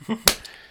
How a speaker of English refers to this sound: This is a song I've written about it. It's got no rhyming scheme. And I'm just clapping because I don't really know what anything mean.